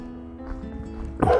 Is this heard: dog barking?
yes